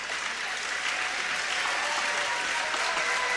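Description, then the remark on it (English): Steady crowd applause at a basketball game as two Trojans players, Abernathy and Wilson, go to the bench during substitutions against Waterloo: a dense, even wash of clapping that holds at a consistent loudness without pause or voices rising above it. “As Abernathy goes to the bench, Wilson goes to the bench, and the crowd recognizes them.”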